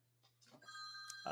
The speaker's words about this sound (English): Oh, look, the phone's ringing. I'll just get rid of that.